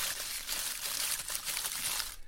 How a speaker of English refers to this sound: So we cut those, dry them well, in glass there houses. Are, if we move over to, I shall just do a little gentle rustling.